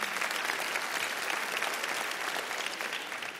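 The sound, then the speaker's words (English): Steady, dense applause from a sizable audience, many hands clapping at once in a continuous wash of sound that holds strong throughout and eases only slightly at the end. “Hang on, you may not clap after this next one.”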